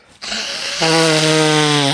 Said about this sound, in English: Oh, I don't know why everyone blowing their nose sounds like a fucking clown.